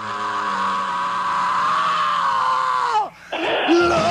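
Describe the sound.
A long, high-pitched rock vocal scream held for about three seconds, loud and strained, then a brief break before the voice cuts back in with a rising, raspy wail, sung live during one of the last songs of a Saturday night concert.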